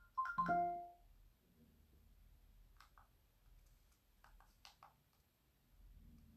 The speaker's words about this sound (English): One of our dogs is going crazy.